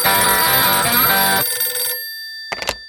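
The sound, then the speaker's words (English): A telephone rings loudly for an incoming call for about a second and a half, its bright tone lingering and fading, followed by a short burst of ringing near the end. No one speaks. “There's a new phone call for us.”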